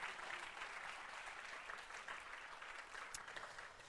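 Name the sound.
audience clapping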